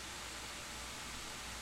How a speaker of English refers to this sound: Boy, I hope that static isn't showing up on your mic.